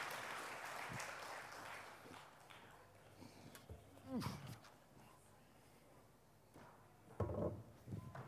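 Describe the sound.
An audience claps for a volunteer called up to the front, in a dense, steady patter that thins out after a couple of seconds, giving way to murmuring voices and a few scattered knocks and bumps.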